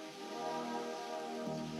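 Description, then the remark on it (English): Steady rain pours down on a crowd standing outside, waiting to enter the unveiling of Vinnie Ream's life-size statue of Lincoln, in a continuous, even hiss, moderately loud, with a faint low tonal hum running beneath it and no voices. “There was not room for all of them to enter, but still they stood in the rain.”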